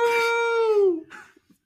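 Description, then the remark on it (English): A person imitates a howl with one sustained, wavering vocal tone that slides downward for about a second, followed by a brief breathy trailing sound. It is fairly loud. “She goes, marriage? No! I'm going to howl.”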